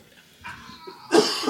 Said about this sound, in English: I cough in your general direction.